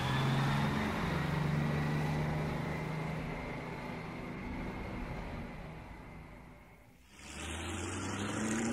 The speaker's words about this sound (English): Is that a... It's a car. Oh, okay. I was gonna guess like a lawnmower or a plane.